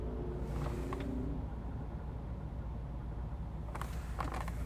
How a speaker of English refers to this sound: Sorry, I'm just trying to listen to my car. That is my car making all that noise. Okay. Oh, no. Started again.